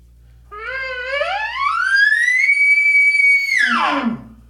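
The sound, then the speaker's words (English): A person imitates an elk bugle through a tube call: a rough, growling tone climbs to a long, sustained high whistle, then drops sharply into a few low grunts. “I didn't mean to do it, but I added voice into it, and that gets kind of that growl and a bugle. So with the tube, this is what that sounds like.”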